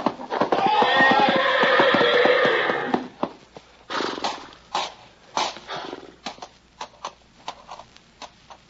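A loud, drawn-out horse whinny lasting a few seconds, then a run of heavy, uneven hoof thumps and stamps as the horse tramples a man, with no talking.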